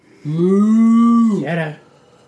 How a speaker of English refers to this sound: Sounds like a cow. The boy points the flashlight into the corner where the cow noise is coming from.